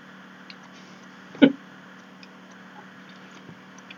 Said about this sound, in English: Bear with me. I'm just going to have a sip of my water again. I'm going to try not to get giggly over the fact my cup's going to get all weird.